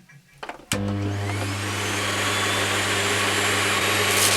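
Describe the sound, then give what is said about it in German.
A vacuum cleaner switches on with a sudden loud start and runs steadily, its motor hum joined by a bright, gritty rattle of sand being sucked through the hose. “Das Rasseln des Sandes im Schlauch muss hörbar sein.”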